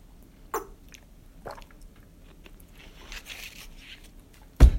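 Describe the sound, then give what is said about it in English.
Someone chews gum: soft, wet mouth clicks and smacks at irregular intervals, with a sharper, louder smack right at the end. No one speaks. “Hold on, I'm chewing gum, so.”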